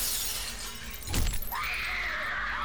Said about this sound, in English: Then suddenly, he heard a shattering of glass from the 10th story window above his head.